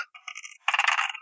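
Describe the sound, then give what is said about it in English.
Physical dice clatter and tumble across a table in two quick rattling bursts, the second louder and busier, with no voices, rolled for an awareness check in a tabletop game. “Oh, right. Physical dice. That whole deal. I rolled 3 by 10.”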